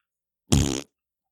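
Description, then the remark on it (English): A single loud, buzzy fart noise blown with the mouth at a wedding, lasting about a third of a second, alone against silence. “Instead, just like a knee-jerk motion, I made this very loud fart noise.”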